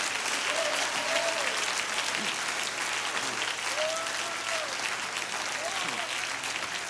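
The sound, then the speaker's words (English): A large audience claps hands in dense, steady applause that holds for the full seven seconds, with faint shouts and voices rising through the clapping now and then. “Let's clap our hands all over this house right now.”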